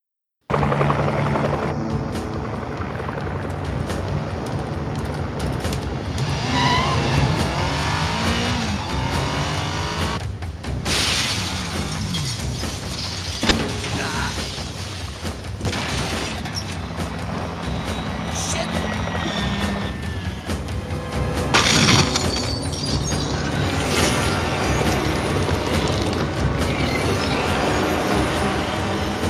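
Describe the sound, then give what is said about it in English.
A loud, steady helicopter roar fills the whole stretch, joined by several sharp crashes and bursts of shattering glass scattered throughout, with a dense, chaotic rumble underneath. “All right, this one's called ….”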